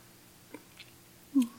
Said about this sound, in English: Well, at least I got your drink down. And you take another sip.